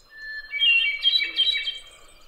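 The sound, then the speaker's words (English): A hermit thrush's clear, flute-like song rings out in a few rising, fluting phrases that shimmer and fade, echoing off birch, maple and oak trees in woods in North America, heard alone with no one speaking. “At that motion, I caught the fading, flute-like trill of one of the most iconic bird songs in North America, echoing off the birch, maple, and oak trees.”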